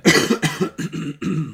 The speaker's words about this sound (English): I'm going to cough now. You're making me laugh. Sorry.